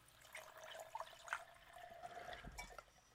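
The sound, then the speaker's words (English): Uncle Nearest 1820 whiskey being poured into a glass, about half a finger, a soft steady gurgling trickle lasting a few seconds with small splashes, fairly quiet and with no one speaking. “And I'm going to be ginger, but I'm going to go ahead and pour a good.”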